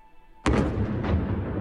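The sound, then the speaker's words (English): A sudden heavy explosion bursts in after a brief near-silence, followed by a rolling, rumbling roar that lingers; a large distant blast heard across the capital soon after 4:30 a.m. local time as a Russian military operation began, with car alarms whining; no voices present. “Distant explosions and the whine of car alarms were heard across the capital.”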